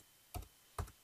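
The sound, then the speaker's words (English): Two quick clacks of computer keyboard keys, spaced about half a second apart, each with a faint double tap, with no talking, as someone types an email address into a chat. “I'm typing your Hotmail address.”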